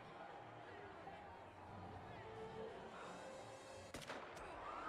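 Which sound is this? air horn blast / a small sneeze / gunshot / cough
gunshot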